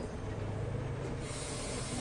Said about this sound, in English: Steam locomotives. Childhood trains that puffed and shrieked and jabbered.